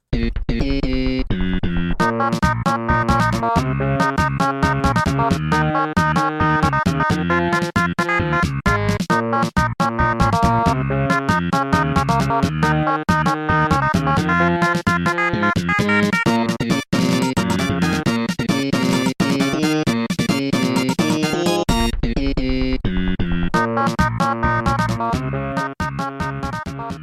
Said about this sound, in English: Okay, we're going to move on to an SNES track. It's from James Bond Jr. I don't think I've heard of that game.